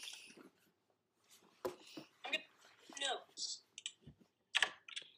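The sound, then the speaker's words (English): Loud computer keyboard typing: irregular bursts of sharp, clattering keystrokes with brief pauses between flurries. “Oh my gosh, your keyboard is so freaking loud, bro.”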